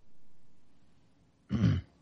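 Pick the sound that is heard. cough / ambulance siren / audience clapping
cough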